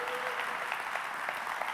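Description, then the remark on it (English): A church audience applauds steadily during a sermon, a dense wash of clapping hands at moderate volume with no pauses, a faint sustained tone briefly audible beneath at the start. “Your applause hisses the enemy away.”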